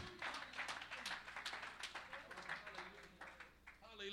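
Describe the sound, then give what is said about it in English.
An audience claps hands in praise during a sermon, a dense, uneven patter of sharp slaps that runs steadily for several seconds, with voices murmuring and calling out underneath. “Oh, somebody clap your hands and give Him praise.”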